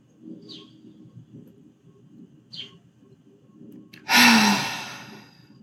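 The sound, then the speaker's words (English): A quiet, deep cleansing breath drawn in through the nose, followed by a loud, breathy sighing exhale out through the mouth that gradually fades away, in Queens, over a low background hum with no talking. “If you want to take 2 deep cleansing breaths in through the nose and out through the mouth with a sigh, if that feels good for you.”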